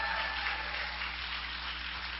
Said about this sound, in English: Let's give the Lord another hand clap for them. Amen.